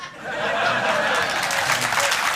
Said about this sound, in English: That's a pity applause. They're clapping for you. They just waited politely till I'd finished.